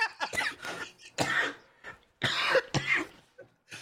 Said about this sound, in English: So you're actually making me want to cough. Like, I'm getting like anxiety coughs for you.